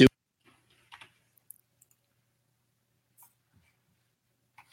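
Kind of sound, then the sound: fault, call connection drop-out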